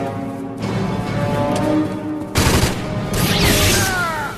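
Rapid bursts of gunfire fill the scene, with a dense fusillade that grows louder and harsher midway, sharp repeated shots cracking over a continuous roar and ringing tones.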